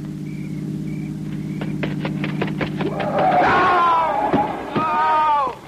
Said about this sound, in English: Listen. It's a car. It's got to be the one I think it is.